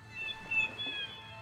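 A gull's cry, a thin, high, drawn-out mewing call that holds its pitch for over a second with a slight waver, fairly quiet over a low background hum.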